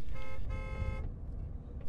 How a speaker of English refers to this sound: Later, as he listened to the purr of his car's engine, he reflected on the fact that he wouldn't need a bulletproof limousine.